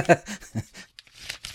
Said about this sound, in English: You could just be crumpling up any paper. Like that's true, but I did actually write four lines.